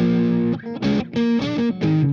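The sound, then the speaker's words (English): An electric guitar played through a Brute Drive overdrive distortion pedal, set to regular distortion, plays a short run of thick, saturated rhythm chords, each ringing briefly before the next, loud with no talking over it. “So the boost, in which I often use as, so say for instance, I got regular distortion on, so.”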